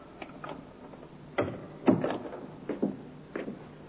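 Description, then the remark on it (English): A door opens at night in an empty, echoing club, with a series of soft creaks and knocks, a few distinct thuds spaced unevenly over a few seconds. “The door, Inspector. I heard it, Sergeant.”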